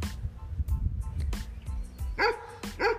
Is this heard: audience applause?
no